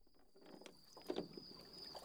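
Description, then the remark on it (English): Gentle wooden creaks and soft water lapping as a small rowboat rocks, with a brief louder knock near the middle over a faint, steady airy hiss. “Winston opened his eyes to find himself sitting in a little rowboat. The boat rocked in the water after he landed on one of the seats.”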